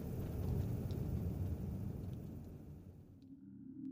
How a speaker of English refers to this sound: I've done several jobs on Svalbard over the last few years, and never have I seen a storm go on for so long.